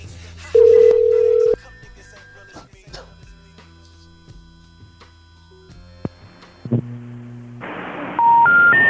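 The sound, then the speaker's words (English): Electronic telephone tones from a call that fails to connect: one loud, steady beep lasting about a second, a quiet stretch with faint line noise, then a short run of three rising tones at the end. No one speaks. “He has his phone service through Comcast, apparently.”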